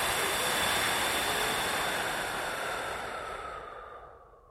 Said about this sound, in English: So we're going to have to blow them out one more time. And I want you to really take a nice deep breath in this time and blow out really hard with everything you got. You ready? And deep breath in. And blow it out.